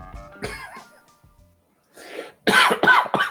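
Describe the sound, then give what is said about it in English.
A man coughs several times in close succession: a rough cough near the start, a pause, then a burst of two or three harsh, loud coughs. “That's you coughing.”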